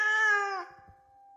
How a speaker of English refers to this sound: Nobody except the cats, who continue crying. Right on through the witching hour and into tomorrow.